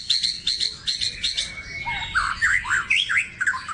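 Bright, rapid bird chirps repeat in quick bursts, joined midway by a second bird's warbling, looping song, all fairly close and clear over a soft outdoor background.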